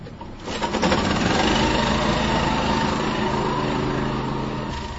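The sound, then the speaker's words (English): An oil-collection vacuum truck's pump engine runs with a loud, steady mechanical drone and a buzzing, high-pitched whine, swelling in during the first half second and then holding constant with no voices. It puts suction on a 2-inch hose attached to the truck's 450-gallon tank. “Rosenstrauss says the hose attached to the 450-gallon tank on the truck functions a lot like a vacuum.”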